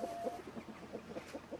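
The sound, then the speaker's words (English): A crowd of ducks, turkeys, geese and chickens clucking and calling over one another in a massive show hall in Ireland, a steady jumble of short repeated calls filling the busy, echoing space. “As we make our way into the massive show hall, nothing can prepare you for the collective sound of ducks, turkeys, geese, and chickens, all talking away to each other.”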